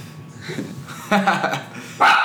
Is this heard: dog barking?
yes